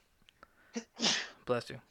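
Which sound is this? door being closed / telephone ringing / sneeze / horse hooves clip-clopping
sneeze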